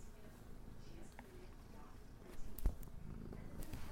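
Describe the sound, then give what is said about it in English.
A male cat purrs steadily, a low continuous rumble with soft rhythmic pulsing, with a brief sharp click partway through. “Kitty, what's the matter? He's purring.”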